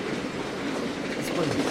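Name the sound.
train sound effect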